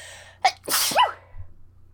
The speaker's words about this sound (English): I have to sneeze. Bless you.